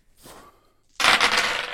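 Three dice rattle softly, then are thrown onto a table with a loud, sudden clatter of rapid tumbling knocks that keeps going for most of a second, one falling off the table. No voices.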